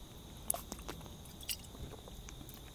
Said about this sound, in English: And as we begin walking, I actually need to just take a quick drink of water.